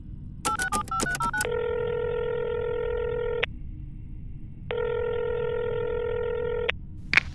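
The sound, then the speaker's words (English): A rapid burst of about half a dozen telephone keypad beeps, followed by two long, buzzy ringing tones separated by a pause, heard clearly with no one talking. “Contact them now. You heard the man. Give me an open channel, you wax-eyed phone monkeys.”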